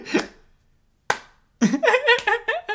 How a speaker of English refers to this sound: I'm slow clapping.